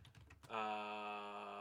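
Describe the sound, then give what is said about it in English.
A quick burst of four or five crisp computer keyboard keystrokes as someone types to bring up the FanGraphs Blue Jays depth chart, followed by a louder, steady held tonal sound that runs to the end. “Yeah, I don't know why I'm typing this shit.”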